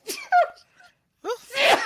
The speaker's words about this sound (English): I have to sneeze. Excuse me.